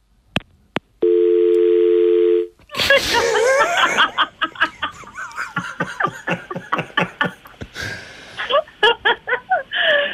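telephone dial tone

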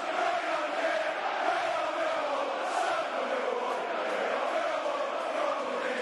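football stadium crowd chanting

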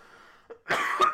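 cough

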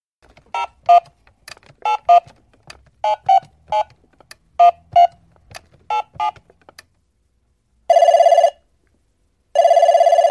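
telephone ringing

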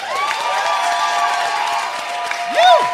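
audience applause

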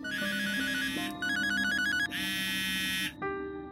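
telephone ringing

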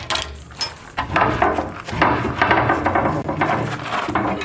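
heavy door opening

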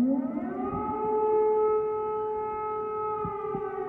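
air raid siren

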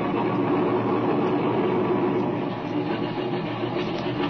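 airplane engine running

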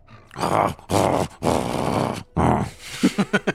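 dog grunting and growling

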